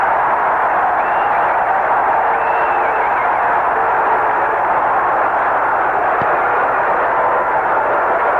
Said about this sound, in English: But this punt by John James to push Dallas way back. Listen to the crowd.